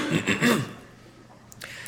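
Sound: cough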